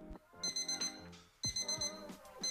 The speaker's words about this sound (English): Why is your alarm going off so early again?